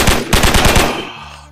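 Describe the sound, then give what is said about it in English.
A rapid burst of gunfire, about six sharp, loud shots in quick succession, followed by a low rumbling tail as the echo dies away. No one speaks. “Gunshots. Gunshots. Come on, man.”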